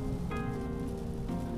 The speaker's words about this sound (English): Man, it is a rainy day today, Wednesday. I think it's going to rain all day too, of course.